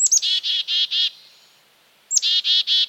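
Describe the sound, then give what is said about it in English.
A black-capped chickadee gives its chick-a-dee-dee-dee call twice, each time a quick high opening note followed by three or four buzzy, evenly spaced dee notes, clear. “That's the black-capped chickadee.”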